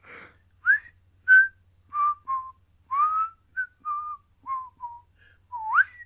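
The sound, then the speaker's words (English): A person whistles a short, slightly wobbly melody of about a dozen sliding notes from a 1968 song, clear, with brief pauses between phrases and no talking. “…, 1968, …. I was there whistling in that. The bit that I just did badly.”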